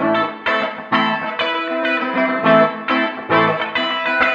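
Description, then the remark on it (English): An electric guitar, sent to a bus track with a small guitar chamber reverb preset, plays a repeating strummed chord pattern in steady pulses, with a short, roomy reverb tail that softly blurs each attack, fairly loud. “Small Guitar Chamber.”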